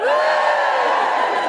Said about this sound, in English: Any mothers in? Give me a cheer if you're not a mother.